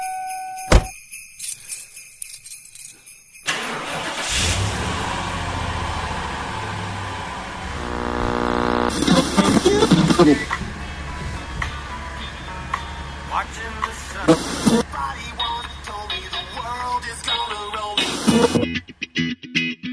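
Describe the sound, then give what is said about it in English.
A short special edition Christmas theme song kicks in after a brief tone: dense, layered and loud, with jingling bits and a rising revving swell midway. It runs about fifteen seconds before cutting off abruptly. “A special edition theme song there.”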